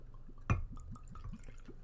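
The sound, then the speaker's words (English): Tito's vodka poured from the bottle into a shot glass: a quick clink, then a steady run of soft, rhythmic glugs from the bottle neck, fairly quiet, with no talking. “Tito's, yeah, so I guess we'll just pour it now, just in case.”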